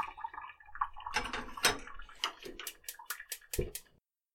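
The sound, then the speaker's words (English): Water pours from a tap into a pot to be boiled, a splashy rush with sloshing and clinking bursts, ending abruptly after about four seconds. No one speaks. “And I think I'll start some water too to boil it and see how that is in comparison.”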